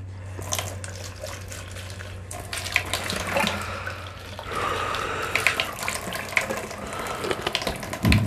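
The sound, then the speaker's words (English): A Mio-flavored drink is poured steadily into a sink, splashing and gurgling against the basin for several seconds, with a faint low hum underneath and no voices. “Beginning to think I can't have this Mio stuff. In fact, I'm just going to pour it out.”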